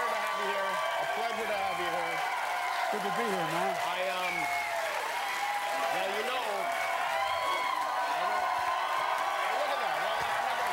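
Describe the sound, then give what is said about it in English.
A studio audience on the Jimmy Kimmel Show applauds and cheers steadily throughout as someone comes onto the show, a loud, dense wash of clapping layered with whooping, shouting voices that rise and fall without letting up. “But you don't get that kind of, Jesus Christ himself would not get that kind of applause break when coming onto the Jimmy Kimmel Show.”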